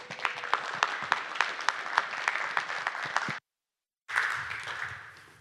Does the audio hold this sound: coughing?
no